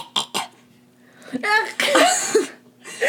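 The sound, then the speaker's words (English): A run of harsh, wet coughs as someone coughs up blood: two short hacks, a pause, then a longer gurgling, choking fit and a final rasping cough, with no words spoken. “I began coughing up blood.”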